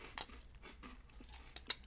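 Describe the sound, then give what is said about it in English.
Quiet crunching as someone chews Puffs breakfast cereal with milk: two sharp, bright crunches about a second and a half apart, with softer irregular chewing sounds between them and no talking. “This is a great cereal.”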